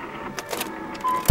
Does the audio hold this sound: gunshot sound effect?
no